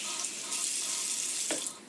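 Water pours steadily from a tap, a continuous bright rushing hiss with a brief clunk near the end, moderately loud, with no talking.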